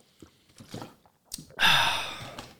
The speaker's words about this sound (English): Please hold as I take a swig of my Fiji water.